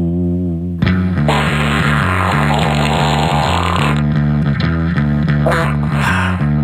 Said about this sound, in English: With fart drops galore in the background.